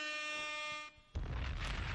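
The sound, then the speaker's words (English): A loud, brassy air horn blares in one sustained blast for about a second, breaks off briefly, then gives way to a harsh, rumbling burst of noise. “Air horns! Air horns! Do the air horns!”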